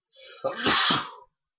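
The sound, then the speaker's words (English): A single loud sneeze, a quick breathy intake followed by a sharp, hissing burst that fades out after about a second, with no talking. “It's because sneezing.”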